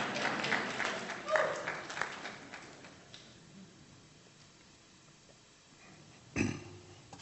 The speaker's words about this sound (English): Let's have a nice round of applause for this kind brother.